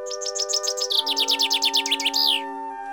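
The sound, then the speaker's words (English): An imitated bird-call whistle blown on a bird-calling staff held up like a flute: a quick run of bright, twittering chirps over a steady, flute-like held tone that drops in pitch partway through, lasting about two and a half seconds, fairly loud. “I pull out the staff of bird calling.”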